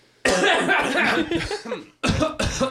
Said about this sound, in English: I always start with a little throat clear.